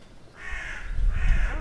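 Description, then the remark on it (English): A bird calls nearby with two harsh, raspy caws in quick succession, fairly loud and close, over a low rumble of wind or handling noise. “Yeah, so there's a real life dinosaur just there in front of you.”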